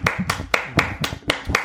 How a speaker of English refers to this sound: He gets the claps for that for sure. We'll give him the claps right now.